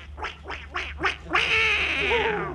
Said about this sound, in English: I was just winding up one of the ducks.